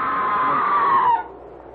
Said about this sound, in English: That was a scream, Sir Leonard. Not the wind playing tricks.